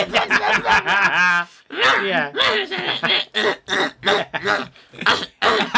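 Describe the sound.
A voice imitates a witch's wavering, sobbing cries, then breaks into a run of loud, choppy coughs and throat-clearing bursts in uneven rhythm.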